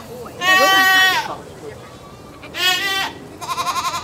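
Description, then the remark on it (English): A goat bleats loudly twice while being pulled by hand near a tree, each call a long wavering cry, followed by a quicker, pulsing bleat at the end. “Oh, I should grab some goat treats, eh?”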